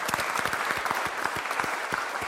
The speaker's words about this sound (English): So I want to invite you to stand and clap for God and thank Him for the goodness of life that He's given.